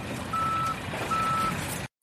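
Two long, steady electronic beeps from a truck backing up, sounding over a low rumbling engine, with a short gap between them before the sound cuts off abruptly.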